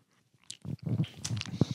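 Wet mouth sounds of someone sipping a shot of a milky drink that looks and tastes like chocolate milk, with a few soft slurps and gulps over about two seconds, fairly quiet and without clear talking.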